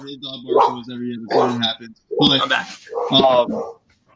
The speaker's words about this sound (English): My dog's not a Howie fan. Yeah. Our dog barks.